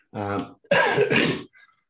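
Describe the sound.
A loud cough from a person with a head cold: a short voiced, throaty sound followed by a harsh, raspy burst lasting nearly a second, then a faint trailing breath.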